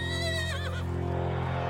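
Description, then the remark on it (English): A single short horse whinny with a quavering, wavering pitch, fading within about a second over a steady low hum that continues alone afterward. No one speaks. “They were doing an event in the countryside with their horses, and it was like too muddy, so the riders instead did the race.”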